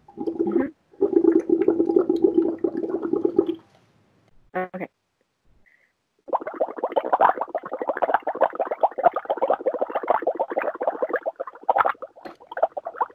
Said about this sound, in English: But I want you to pop this straw about an inch into the water. Okay. Cool. Now, I want you to blow some bubbles. Let's see if we can hold it for 5 seconds.